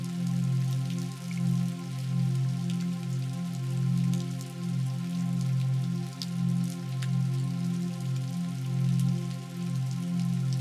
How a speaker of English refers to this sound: The sound of the rain allows you to go deeper and deeper into a state of relaxation.